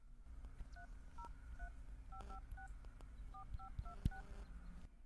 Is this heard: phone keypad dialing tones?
yes